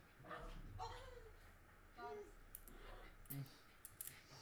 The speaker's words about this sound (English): Oh my God, the dogs are going crazy. Oh boy.